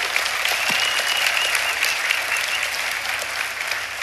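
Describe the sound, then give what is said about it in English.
A large audience at Highland church claps steadily for its graduates on graduation weekend, a dense wash of many hands applauding at a constant loud level for several seconds, with a faint cheer or two in the mix and no talking. “Can we give one more round of applause for all of our graduates?”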